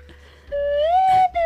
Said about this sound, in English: I don't know if it's in the register of this $3 slide whistle.